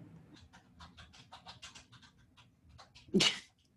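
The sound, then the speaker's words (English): A dog pants rapidly and rhythmically for a few seconds, then lets out a single sharp, loud bark near the end. “oh my goodness, these dogs.”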